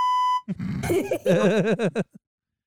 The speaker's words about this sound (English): I didn't actually say it for those. I did the beep.